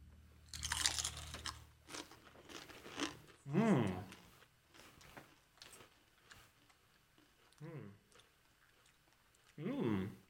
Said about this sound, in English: Here's what we're gonna do. Okay. We're gonna dink. We're gonna push the mics away. We're gonna chew. We're going to swallow. We're going to bring the mics close.